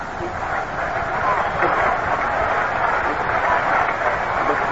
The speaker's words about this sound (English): Now the big crowd at Shea starting to roar, "Let's go, Mets!"